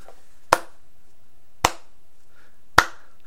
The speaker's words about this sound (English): That is the slow clap, neighborhood. The slow clap.